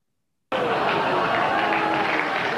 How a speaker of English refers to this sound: I mean, listen to the crowd. It's like you said, you hear the applause, you hear some groans. Like, that's all part of his shtick. 100%. Get that great mixed reaction.